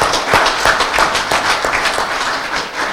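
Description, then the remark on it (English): An audience at a church service claps their hands for the Lord after a Bible verse, in steady, loud applause, many sharp claps overlapping into a continuous patter with a few stronger beats standing out, and no voices. “But before you get too much excited clapping your hands, hold on to your seat.”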